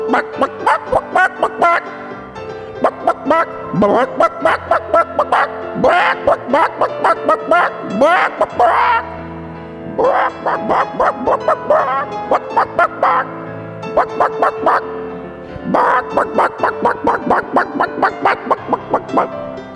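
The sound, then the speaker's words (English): A man's voice imitates a dog barking, loud, with rapid yappy barks in quick bursts that pause briefly and start again for about twenty seconds. “Bark, bark, bark, bark. Bark, bark, bark, bark. Bark, bark, bark, bark, bark.”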